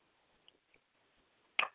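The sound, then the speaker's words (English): A quiet sip of water: a couple of faint wet clicks, then a short, louder slurp and swallow near the end, with no talking. “Okay, got to take a drink of water 1 second.”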